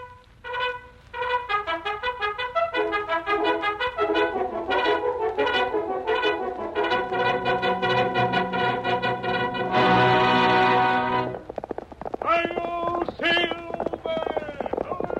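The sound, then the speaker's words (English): Loud, brassy old-time radio theme music of The Lone Ranger, the William Tell Overture by Gioachino Rossini, plays with galloping horse hooves driving a fast, steady rhythm. A brief burst of noise follows, then a louder stretch of music. “No doubt you recognize the Lone Ranger from its theme music, the William Tell Overture.”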